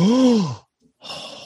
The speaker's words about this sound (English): Hold that gasp.